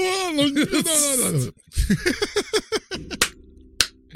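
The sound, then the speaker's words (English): Two sharp hand claps land about half a second apart near the end, after a stretch of high, wavering laughter and some chattering voices. “We'll have two claps.”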